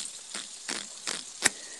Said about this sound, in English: I'm fucking cleaning some dishes off.